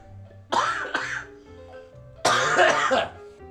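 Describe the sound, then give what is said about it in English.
A person coughs: a quick double cough, a short pause, then a longer, harsher rasping cough, with no speech. “Dear God, I am so sorry, by the way, for coughing throughout this here program.”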